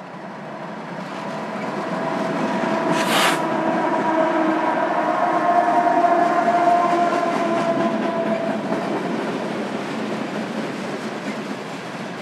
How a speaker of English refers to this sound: So yeah, here we have a freight train coming up from Denver. It's big. It's really long. I can't see the end of it. Wow.